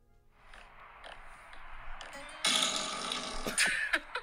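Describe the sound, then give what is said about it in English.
Fart-like noises from a novelty device play a tune: a few short raspy blips, then a long, loud, buzzing blast and some quick sputters to finish. No one speaks. “You have fart footage. And I have some audio of it here if you guys want to hear this.”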